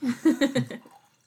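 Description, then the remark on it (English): Wine glugs from a bottle into a glass in a quick burst of five or six hollow, bubbling gulps, fairly loud, tapering off as the pour ends. “Would you guys like some wine?”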